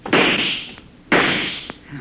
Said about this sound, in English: They busted the door in, Hop. They're shooting.